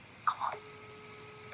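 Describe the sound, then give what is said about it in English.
A phone line ringing tone on a call to the Cookie Monster, which goes unanswered: two short electronic beeps followed by a long, steady tone that holds for about a second. It's faint and thin, with no voices. “Oh my god, it's actually ringing.”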